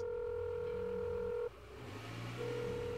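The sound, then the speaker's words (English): A steady electronic phone tone sounds for about a second and a half, breaks off, then returns after a short pause, like keypad dialing tones on a cell phone as someone makes a call. “And as they exit the premises, as they pass by the threshold of the dead zone, they turn on their cell phone and make a call.”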